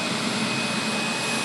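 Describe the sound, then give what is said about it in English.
A steady, loud rushing whoosh of air suction as a wheat sample, taken from a truck at a port grain operator, is sucked up a pneumatic tube to a plastic bin in an upstairs office, with a low hum beneath the hiss and no voices. “The sample gets sucked up into a pneumatic tube and drops into a plastic bin on the desk of an office upstairs.”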